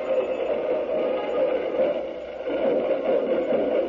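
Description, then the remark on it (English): A band plays continuously at a steady, fairly loud level with a muffled, narrow, radio-like tone, dipping briefly near the middle before swelling back up. No one speaks. “Now we're going to let you listen to the band for a moment.”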